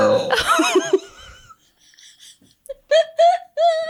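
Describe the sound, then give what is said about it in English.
A loud, rough burp lasting under a second, followed after a pause by several short bursts of laughter. “Yeah, that was a horrible burp.”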